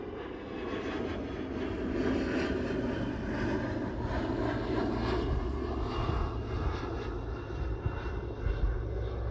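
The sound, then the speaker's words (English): A private jet, a G5, roars steadily overhead, a loud, continuous engine rumble with a heavy low end and a whooshing hiss that holds for the entire stretch, with no voices present. “G5 agenda, private jet.”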